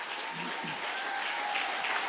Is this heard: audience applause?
yes